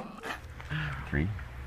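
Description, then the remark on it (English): A small dog, Lily, barks, letting out three short, yelping barks with a whiny, rising tone, spaced unevenly over a couple of seconds. “With special guest star Lily the Barking Bean.”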